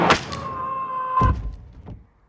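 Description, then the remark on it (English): A door creaks with a high, drawn-out squeal before slamming shut on Jeff Goldblum's hand in a Wes Anderson film with a heavy thud, followed by a softer knock as the sound fades. “I always forget that Jeff Goldblum gets the door shut on his hand.”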